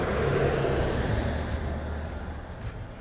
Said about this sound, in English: I'm just sitting on my friend's stoop, listening to the waves, and was also listening to the traffic. You can hear both. As one car goes by.